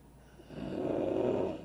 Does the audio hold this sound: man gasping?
yes